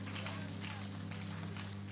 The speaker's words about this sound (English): Then take the second hand. And then clap them together for a clap offering.